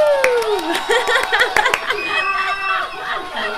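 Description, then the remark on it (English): A cheers and applause sound effect: a crowd cheers and whoops over a steady patter of clapping, loud, with excited voices rising and falling together for a few seconds. “That was just a cheers and applause.”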